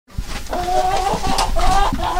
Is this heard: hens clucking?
yes